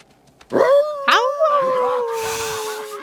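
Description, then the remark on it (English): Several dogs, Steel and his gang in the film Balto, howl together mockingly at Balto in an alleyway scene, in long, overlapping wavering tones, rising sharply then drawn out and sliding downward, loud, with a brief rougher burst of noise near the end. “And they all howl along, mocking and leering.”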